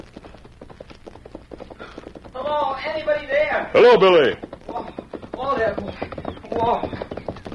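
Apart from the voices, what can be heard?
horse hooves clip-clopping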